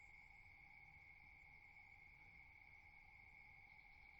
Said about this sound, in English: The crickets are singing.